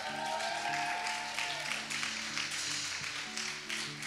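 A church audience claps steadily for about four seconds for the speaker's wife, a dense wash of applause with no clear break, while sustained low keyboard or organ notes hum underneath.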